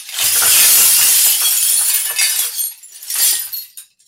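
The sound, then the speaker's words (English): A homemade sound-effect box filled with broken glass, built as an exact copy of an antique catalog design, is shaken, producing a loud, sustained jangling crash of shards that swells, eases, then surges once more before stopping. No voices. “It's filled with glass.”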